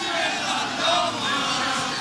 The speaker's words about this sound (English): The bus is no more than probably about 15 yards away from where I am now, and the players are starting to make their way down, and you can hear the crowd singing as well.